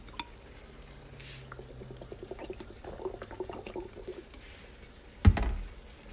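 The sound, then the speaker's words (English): Water is poured for tasting, pouring and trickling with scattered small drips and splashes over a few seconds, ending in a brief louder splash or clunk near the finish; no one speaks. “No, but like we're tasting water here, boys.”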